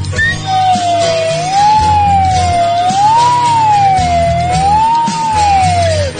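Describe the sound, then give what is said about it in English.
A slide whistle plays a slow, wavering melody, its pure tone gliding smoothly up and down. It is loud over a steady low accompaniment and sounds continuously throughout. “Still my slide whistle gently weeps.”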